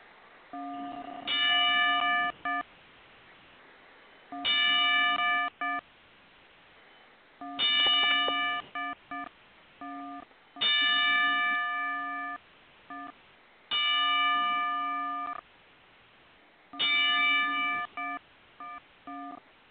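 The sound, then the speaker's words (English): A wrestling ring bell clangs ten times in slow, evenly spaced strikes as a ten-bell salute in memory of a deceased person. Each bright metallic hit rings out briefly before the next, a steady solemn tolling heard alone with no talking. “now we give Johnny and Matthew's mom a 10 bell salute”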